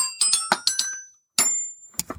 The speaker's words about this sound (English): All right, so my buzzer is... It's a bell.